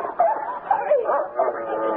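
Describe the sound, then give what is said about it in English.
A dog barks and yips excitedly, a quick run of short, high-pitched yelps bunched together over a couple of seconds. “Let the dog out.”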